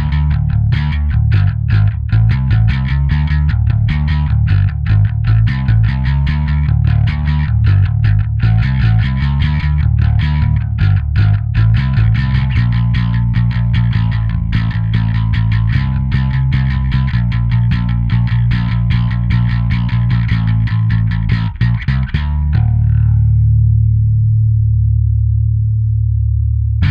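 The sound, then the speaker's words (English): An electric guitar plays through a cleaner artist amp preset by Henrik Udd in a tight, rhythmic riff of rapid chugging notes, loud, ending on a sustained low chord that rings out and fades. “Now something a bit cleaner and with some solid foundations for backing up a band, an artist preset from Henrik Udd,”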